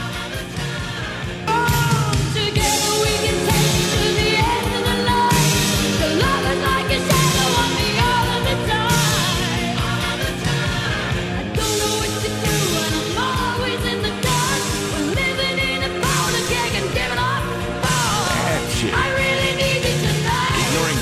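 A loud, full-band 1980s power ballad plays without pause, a dramatic female voice belting over pounding drums, piano and swelling backing vocals at a steady, driving pulse.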